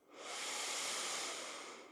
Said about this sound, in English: Let's take a deep, full breath in through the nose.